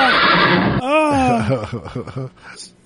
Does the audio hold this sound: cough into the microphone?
no